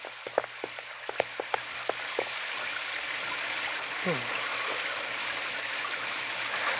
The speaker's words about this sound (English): The rain's cold.